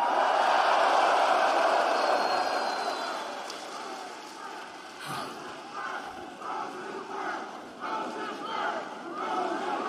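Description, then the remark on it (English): A large arena crowd at AEW Dynamite in Rosenberg, Texas roars in a dense, sustained wash of cheers mixed with booing, loudest at first and then easing slightly while staying steady throughout. “Wow, what a mixed crowd tonight.”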